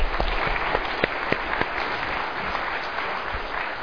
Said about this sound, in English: Thank you. Well, let's, that's okay, you can clap.